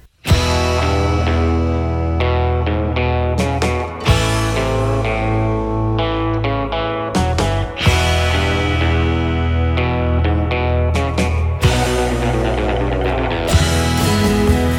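A song plays steadily and loudly, with a thick, distorted band sound, strong bass, harmonic layers and a driving beat running the whole time, shifting chords every few seconds and no talking over it.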